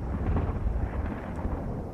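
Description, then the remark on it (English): Artillery detonations blur into a continuous deep, heavy rumble, with low booming swells rising and falling throughout. No one speaks. “For weeks, you've heard nothing but the cries of dying men and the whistle and detonation of artillery all around you.”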